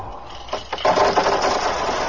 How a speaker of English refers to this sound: Slave, pour out the rubies from the jar.